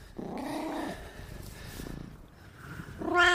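A cat meows twice, a drawn-out call at the start and a louder, rising one at the end, with a low rumbling growl in between. No talking.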